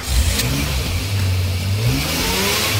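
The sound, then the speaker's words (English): A car engine revs up loudly, its pitch sweeping upward in a couple of surges before settling into a sustained growl, with no voices present. “Start your engines.”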